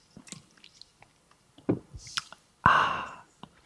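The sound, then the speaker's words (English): Wet mouth sounds of a person taking a quick sip of water: small lip smacks and soft clicks, a quick slurping sip, then a loud, breathy gulp and exhale near the end. No talking. “I'm just gonna take a quick sip of my water.”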